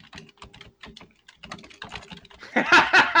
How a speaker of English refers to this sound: Dead vigorously typing.